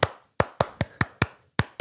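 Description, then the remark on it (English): Seven crisp hand claps tap out a syncopated, repeating rhythm: a gap after the first, a quick even run of four, then another pause before the last two. No talking underneath. “And they get the crowd to clap this crazy fucking ostinato, and the crowd gets it immediately.”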